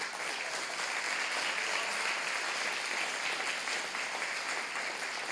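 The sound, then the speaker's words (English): Steady crowd applause honoring a Teacher of the Year, a dense wash of many hands clapping at an even, sustained loudness for several seconds, with no voices rising above it. “I think that deserves a hand clap.”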